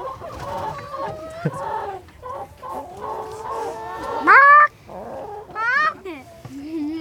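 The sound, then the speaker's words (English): Chickens cluck steadily, with a couple of louder rising squawks breaking through partway along and a softer, lower cluck at the end. “That's what you think it's saying to you. Go away.”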